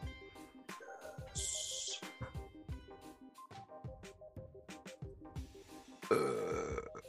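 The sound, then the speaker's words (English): A short, feeble burp sounds, with background music and rhythmic low thumps playing throughout and a brief louder burst near the end. “That was the lamest burp, and it was just rude.”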